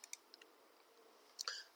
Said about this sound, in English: The bone dice clatter to the edge of the table, then spin and retreat several inches across the warp surface, before at last coming to a rest.